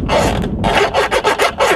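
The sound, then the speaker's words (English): The dash light dimmer of a Yugo car being turned back and forth, making a loud, gritty scraping rasp in about five quick strokes with short pauses between them and no one talking. “Listen to the sound of this dash light dimmer.”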